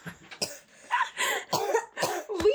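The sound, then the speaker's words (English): A woman coughs and chokes in a rapid series of harsh, raspy bursts, fairly loud, with strained gasping breaths between the coughs, after choking for about two minutes. “She's been choking for like 2 minutes and you're like, do you need water?”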